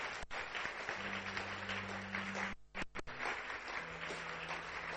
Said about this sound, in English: Yeah, some more people are coming. Clap for them as they come. Clap for them.